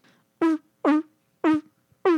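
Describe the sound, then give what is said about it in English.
A voice imitates a sea lion with four loud, honking barks in a steady rhythm, each short, buzzy and harmonic, dropping slightly in pitch, separated by brief silences. “Oh, and seals. Sea lions, really.”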